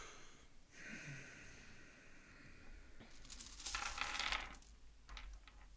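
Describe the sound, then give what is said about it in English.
Dice rattle and clatter across a hard surface in a short burst of tumbling clicks, quiet, followed by a couple of lighter taps as they settle. No one speaks. “I need to roll dice. Just to feel comfortable.”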